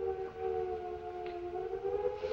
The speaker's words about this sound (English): Sirens, my lady. I'm not deaf. Get all the servants quickly into the cellar.